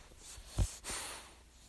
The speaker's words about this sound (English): Don't know if any of you guys can hear that, but the puppy I'm looking after is snoring.